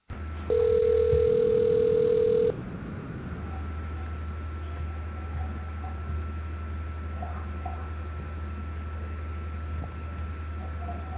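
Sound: phone call ringing unanswered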